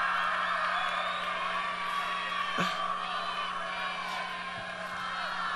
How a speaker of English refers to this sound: Come on, cheer for him.